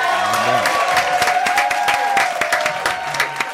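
A crowd applauds loudly and steadily for several seconds, dense overlapping claps with cheers and a few whistles rising above them, lively throughout.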